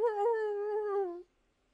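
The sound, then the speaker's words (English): A single drawn-out whimper, a high, tonal whine lasting just over a second and sagging slightly in pitch before cutting off into silence. It is fairly clear, with no talking. “There's whimpering.”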